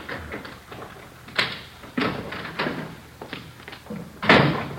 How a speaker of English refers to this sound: Yeah. Kitchen door.